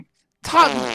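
After near silence, a loud, buzzy fart bursts in about halfway through, a single close, sustained, rumbling blast that holds steady until the end.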